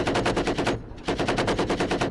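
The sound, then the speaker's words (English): A pintle-mounted stubber machine gun on a Chimera vehicle fires at a creature in two rapid, loud bursts of sharp, evenly spaced reports separated by a brief pause, with no voices. “You cover your eyes as the stubber opens fire, shredding the warp-spawned abomination in a hail of shells.”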